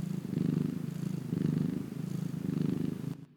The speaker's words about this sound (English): That was a cat purr.